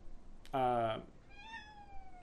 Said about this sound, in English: Hey. Are you kidding me? Hey, kitty cat. Get out of here. Someone else wants to be in the podcast.